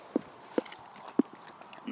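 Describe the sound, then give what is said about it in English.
Three separate hollow hoof clops from horses met on a walk land at uneven intervals, moderately loud, over a quiet outdoor background with a soft rustle near the end. “And we are going to try and walk around this horse.”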